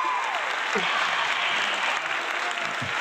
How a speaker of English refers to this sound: The crowd goes wild, young man.